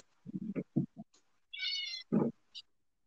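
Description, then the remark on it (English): A cat meows: a few short, low chirping cries, then a drawn-out, higher-pitched meow and one more brief call, with no talking. “Your cat doesn't either, so.”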